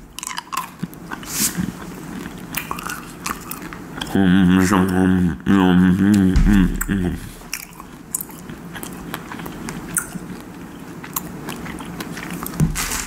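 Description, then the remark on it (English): Wet chewing of Trolley Sour Crunchy Crawlers, a crunchy, chewy sour gummy candy, with repeated sticky bites and crunches throughout and a brief muffled voice over the chewing in the middle. “Never had these before, but they're Trolley Sour Crunchy Crawlers.”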